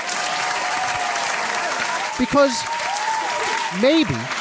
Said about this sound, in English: I want to applaud you. I'm going to hit the applaud button.